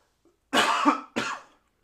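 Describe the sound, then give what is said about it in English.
Two harsh coughs in quick succession, the first longer and louder, the second shorter, with no talking around them. “Know, with cold air comes more coughing.”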